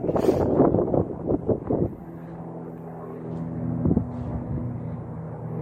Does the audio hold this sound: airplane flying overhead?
yes